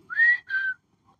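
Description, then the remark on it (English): Outdoors in the morning, a barefoot man whistles with the birds, two sustained, clear notes in imitation of a birdcall, the first steady and the second sliding slightly downward, followed by a brief faint chirp and quiet. “Out here messing with the birds this morning.”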